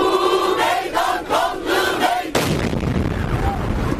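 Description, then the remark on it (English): A crowd of peace protesters beside Ankara train station in Turkey chants and shouts together, then a sudden loud explosion cuts through, leaving a roaring, rumbling wash of noise and cries in its wake; one of two explosions, at least one believed to be a suicide bomber. “2 explosions ripped through the crowd beside Ankara train station, at least one believed to be a suicide bomber.”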